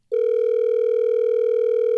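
A loud, steady telephone tone sounds without a break as a call is placed by the hosts of The Miguel Show on the new Hot 101.5, one continuous electronic hum with no voices over it.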